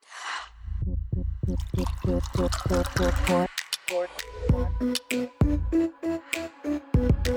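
A quick whoosh, then liquid pours from a bottle in rapid, rhythmic glugs, breaking into irregular splashes and drips; fairly loud, with no one talking.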